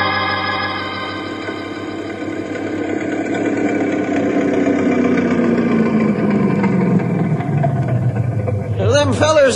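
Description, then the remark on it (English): A speedboat engine roars loudly and steadily, its droning pitch sliding lower as it races past, with a brief burst of other noise at the very end. “what about that crazy speedboat?”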